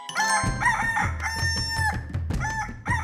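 A cockerel stands up, flaps its wings three times and crows loudly, its bright, harmonic call rising and breaking over about three seconds, with low thumping sounds underneath. No one speaks.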